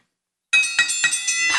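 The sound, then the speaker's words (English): After a brief silence, gavel and bell sound effects play at the same time: about five quick, evenly spaced gavel raps land over a bright, sustained bell ring, the metallic shimmer carrying on between each knock. “This is the gavel and the Kenny Bell all at one time.”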